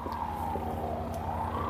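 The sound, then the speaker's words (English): An ambulance siren wails in a slow rising-and-falling sweep over a steady, pulsing low music bed in the intro of an album's first song, both at a moderate, even level with no one speaking. “Ghetto Bird, Ambulance.”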